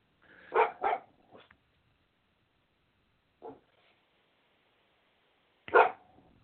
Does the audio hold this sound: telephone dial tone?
no